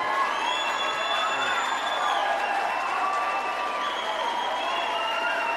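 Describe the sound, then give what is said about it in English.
A large crowd cheers and applauds steadily, a dense wash of clapping with whoops and shouts rising above it, sustained and loud throughout without letting up. “Crowd, of course, loves to hear that.”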